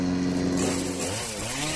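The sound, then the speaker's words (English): A Green Machine 62-volt cordless chainsaw runs loud, its steady electric motor whine shifting pitch as it revs up and down, with no voices. “This fleet of sleek, stylish, and supercharged lawn care solutions has it all, from self-propelled mowers to string trimmers, chainsaws, blowers, and even combo kits.”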